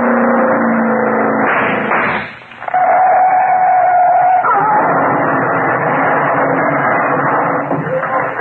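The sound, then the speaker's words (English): A speeding car, doing around 80, roars loudly, cuts out for a moment, then bursts back into a harsh, sustained crashing rumble with a thin screeching tone as it smashes, turns over five times and catches fire, no talking. “Caught fire the minute she smashed. Turned over five times, I counted.”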